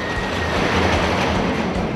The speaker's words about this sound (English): One thing is universal though, there will always be a track and high-speed roller coaster trains moving on it.